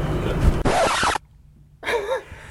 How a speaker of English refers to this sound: And he's just scratched your car.